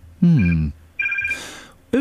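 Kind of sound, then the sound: signal or alarm, telephone ringing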